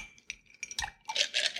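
Ice cubes clink and rattle into a mixing glass holding rye whiskey and Peychaud's bitters for a cocktail, in a quick cluster of bright, hard taps, fairly quiet, ending in a denser burst of tumbling clatter.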